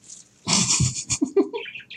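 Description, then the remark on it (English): Birds chirp noisily, starting with a dense, rough burst of calls, then a run of short, high, quick tweets. “Jeez, birds, shut up.”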